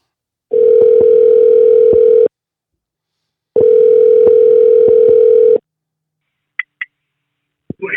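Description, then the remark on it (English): A telephone call placed live on air: the line rings out twice, each a steady, loud, low buzzing tone lasting about two seconds with a pause between, followed by a few faint clicks as if the call connects. “we're going to give him a call right now, and he doesn't even know I'm going to call him.”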